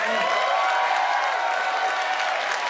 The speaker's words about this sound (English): So, let's do this by applause. Who thinks the crocodile hunter wins?